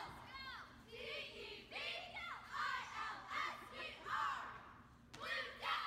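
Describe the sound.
A Walla Walla cheerleading squad performs a cheer: young voices chant and shout together in a loud, rhythmic cheer, with repeated bursts of high-pitched yelling rising and falling across several seconds.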